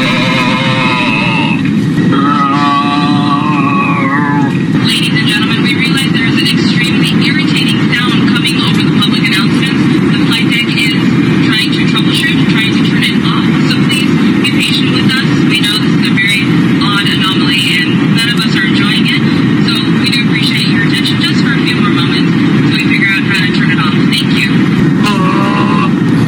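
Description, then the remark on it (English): A man who hacked into an American Airlines flight's intercom grunts and moans over it, crackly wordless vocal noises repeating above a loud, steady roar of cabin and engine noise that fills the whole recording. “this one came around where an American Airlines flight had its intercom hacked in by a person who just, for all intents and purposes, just sat there and grunted and moaned.”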